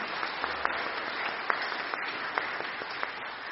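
Steady applause from an audience, a dense wash of many hands clapping with a few sharper individual claps popping out, sustained at an even moderate level throughout.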